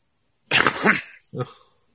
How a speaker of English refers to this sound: He's coughing. I'm not coughing.